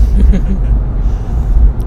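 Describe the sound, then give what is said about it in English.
A steady, loud low rumble of a car engine heard from inside the cabin, continuous throughout, with faint muffled voices underneath. “hopefully I can get you both individually at some point when we're not in a car.”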